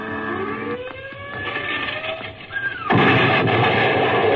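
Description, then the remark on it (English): Rocket bomb explosions: rumbling booms and whistling tones build over a low roar, then a sudden, loud blast bursts in and holds as a dense, sustained roar of noise. “Blast those jetties with their rocket bombs.”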